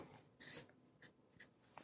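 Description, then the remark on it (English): A pen or marker scratches across a sheet of paper in a few quick strokes as someone draws a picture of themselves: one longer stroke, then three short, separate marks. The strokes are fairly quiet, and no one speaks. “And so if I took the time to do that, maybe I would find a sheet of paper like this, and I would draw myself.”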